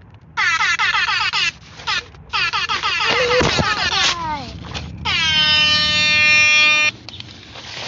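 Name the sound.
air horn blast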